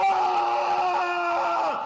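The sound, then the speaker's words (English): A single sustained scream of pain from a player on the floor during a game, loud, holding a strained, wavering pitch for nearly two seconds before dropping off abruptly; any pop before it is not distinct. “If you listen very carefully, you'll hear a pop and then a scream.”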